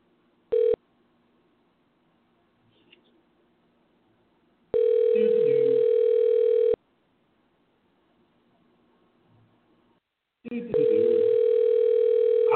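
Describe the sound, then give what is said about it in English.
A loud, steady telephone dial tone comes in bursts as a call is placed to a guest on Wrestle City Radio: a brief blip, then two longer stretches of the same humming tone separated by quiet line hiss. No one speaks. “So let's go ahead and get him on the phone.”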